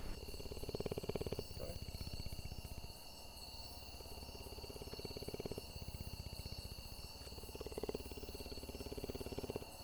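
A puma in Belize purrs in a steady, rapid rumbling pulse that runs continuously, swelling slightly in bursts, over a constant high-pitched insect-like hiss in the background.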